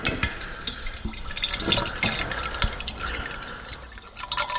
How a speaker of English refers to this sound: We're going to use something like 40% of the overall mix is going to be juniper, so that's a much larger quantity than we use of anything else. Let me just pour that for you right now.